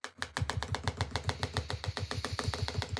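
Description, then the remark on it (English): Fast, steady drumming on a chair leg: a continuous run of sharp, even taps, roughly seven or eight per second, fairly loud with no voices. “Oh, I'm drumming on my chair leg.”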